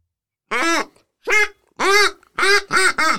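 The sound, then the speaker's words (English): A mallard duck call blown in a series of about six loud, nasal quacks, spaced out at first and then coming quickly back to back, close and clear with no talking. “Mallard calls, it's supposed to come from the diaphragm.”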